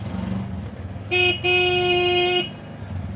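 A small motorized rickshaw putters along with a low engine rumble, then its shrill horn blares twice, a short toot followed by a longer honk, during a ride toward a village.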